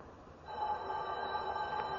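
household object, telephone ringing

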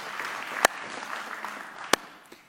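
crowd, church audience applause

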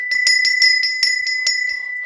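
signal or alarm, bell ringing

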